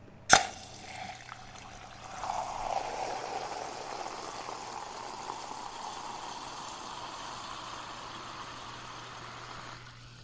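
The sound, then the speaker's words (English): A sharp click opens, then a steady crackling hiss of fizzing seltzer bubbles from a glass seltzer bottle, probably from the 1930s, swells and carries on for several seconds, fairly quiet, with no talking. “Well, you get those bubbles? Well. Mm-hmm. Tell me more. That is seltzer.”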